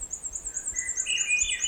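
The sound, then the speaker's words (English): A Swainson's thrush in a jack pine alvar sings a fluty, whistled phrase that spirals upward in pitch, over a steady thread of high, rapid chirping notes. The birdsong sounds fairly soft, with no voices. “Its song is an upward spiraling flute-like melody and can be heard in the summer deep in the forests of Canada and parts of the United States.”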